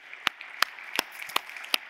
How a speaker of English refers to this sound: So let's give those folks who volunteered a round of applause. Thank you for doing that.